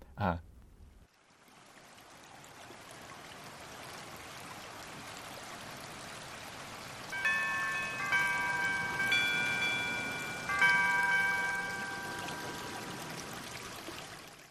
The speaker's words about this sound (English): I have like a little chimey sound that slowly ramps up over time when I wake up and I feel blissful. So, and so I'm going to play to you my alarm sound.